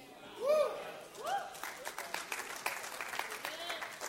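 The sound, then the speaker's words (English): An audience bursts into applause during a sermon after a preacher quotes Leviticus 26:10, dense overlapping claps building and continuing steadily, with a couple of loud voiced whoops or shouts rising above it at the start. “Oh, you can clap bigger than that.”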